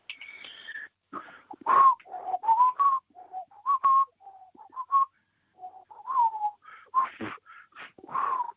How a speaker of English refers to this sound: Let's see who this is. Hello, caller. Whistle away, please.